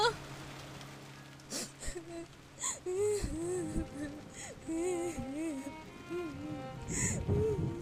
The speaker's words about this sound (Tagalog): Ngunit umuulan, bakit di ka nagdala ng payong?